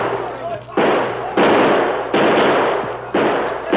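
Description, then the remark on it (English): Several loud gunshots, around five, fired at irregular intervals at attackers at the bottom of an arroyo. Each sharp crack leaves a long, noisy roar that carries straight into the next shot. “Keep shooting anyhow.”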